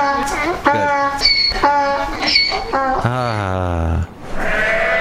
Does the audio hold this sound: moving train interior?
no